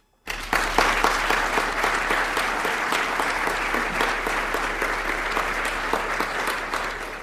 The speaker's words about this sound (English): we should give our thanks to and applaud them because we are going to be providing services for them.